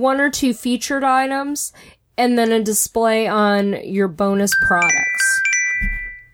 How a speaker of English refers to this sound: and I have no idea where that noise came from. It was not me. That was my phone. I'm sorry.